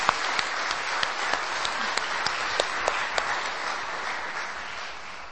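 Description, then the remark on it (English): A church audience on Easter Day applauds the people who arranged the flowers, with steady, dense clapping for about five seconds, a few sharper individual claps standing out early on before the applause gradually thins. “Can we give them a clap?”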